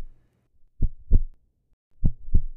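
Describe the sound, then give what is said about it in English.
A steady heartbeat thumps in two double-beat pairs, each a low lub-dub pulse with a short pause between, fairly loud, with no voices. “As I close my eyes and let the darkness engulf me, I can swear I hear his heart beating.”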